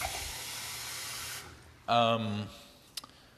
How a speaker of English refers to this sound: Excuse me as I get some water.